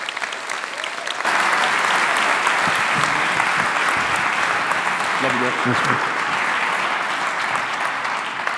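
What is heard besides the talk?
audience round of applause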